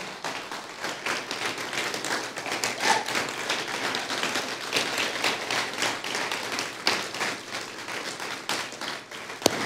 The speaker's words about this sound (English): And can we just clap our hands for her one last time?